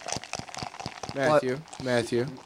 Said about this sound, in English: You're awfully close to the microphone, and we can hear you pouring your soda.